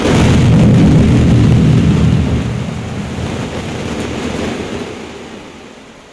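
A rumbling, rolling thunder effect made live by hand with a balloon full of BBs for an audio theater play, loud and deep at first, then gradually fading over several seconds, with no talking.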